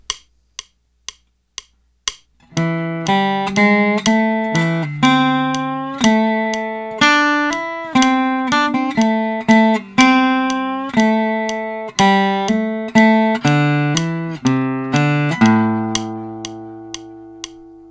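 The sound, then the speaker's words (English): A slow electric guitar lick using mostly minor pentatonic notes, with hammer-ons and quarter-step slides, played slowly and preceded by four soft metronome-like clicks. Sustained, harmonically rich tones; no talking. “Finally, example 6 is an example using mostly minor pentatonic notes with some hammer-ons and some quarter step slides.”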